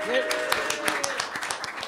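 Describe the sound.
A brief burst of audience applause at a live car-themed show for a woman called up from the audience, a dense patter of many hands clapping at moderate volume, with a faint voice or cheer mixed in near the start.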